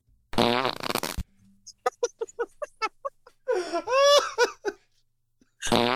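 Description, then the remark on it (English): A wet, sputtering fart sound effect bursts out, followed by a rapid run of short squelchy pops and a longer bubbly splutter, with bursts of laughter at the start and end. “it's not funny. It's a fart.”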